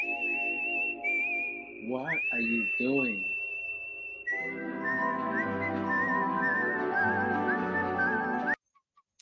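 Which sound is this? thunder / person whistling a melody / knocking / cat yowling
person whistling a melody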